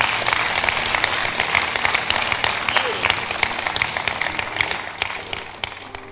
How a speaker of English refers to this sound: Clap for Jesus.